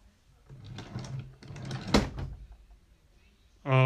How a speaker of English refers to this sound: That's when a man, or, well, actually looked like one of the screwball characters I'd never seen before, walked up, knocked on my door.